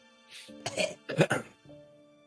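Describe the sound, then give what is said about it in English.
Two harsh, throaty coughs in quick succession, fairly loud, each a short raspy burst with a brief gap between them and a faint steady hum underneath, as someone coughs up blood. “Coughs up more blood.”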